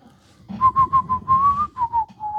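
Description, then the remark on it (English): A person whistles a short, lilting tune in quick, clear notes that slide gently up and down in pitch. The whistling is fairly loud, with a low murmur of background sound underneath. “Sorry, I like the whistle.”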